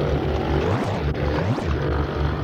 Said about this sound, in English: This one is quite a small plane, just a single prop job. Looks more like a toy compared to the other ones.